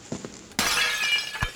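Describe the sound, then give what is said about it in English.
Glass shatters suddenly with a loud, bright crash as someone puts their head through it in an abandoned house, followed by a brief tinkling spray of falling shards and a low thud near the end. “Don't put your head through that glass.”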